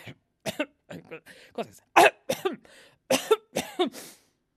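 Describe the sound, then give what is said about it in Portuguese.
A person with a cough coughs in a series of sharp, quick irregular bursts, about ten short hacks with brief pauses between them, fairly loud and with no talking over them. “Ai, que tosse. Tenho tosse.”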